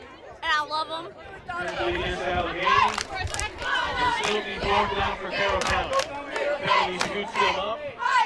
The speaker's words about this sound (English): There's the band, the cheers, the game on the field, and especially the student cheering section, led by the self-identified Cougar Maniacs.